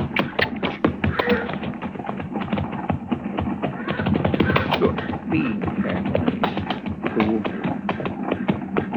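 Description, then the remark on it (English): Several ridden horses' hooves clip-clop in a busy, overlapping rhythm, steady throughout, with a dense patter of sharp knocks and no pause. “Well, let's ride down and say hello anyway.”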